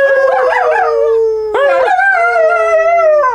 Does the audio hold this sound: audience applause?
no